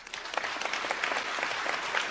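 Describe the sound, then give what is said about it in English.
A crowd at a gathering of Israelis claps steadily, dense overlapping handclaps forming a continuous wash of applause at moderate volume, with no voices standing out. “This is at the gathering of Israelis, so the applause.”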